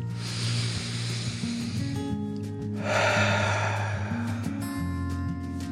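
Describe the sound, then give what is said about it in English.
A long, deep breath drawn in, a brief pause, then a slow, airy exhale, fairly loud over a steady low humming musical drone. “Finally, back in its cozy cave, the dragon took a deep breath in and out.”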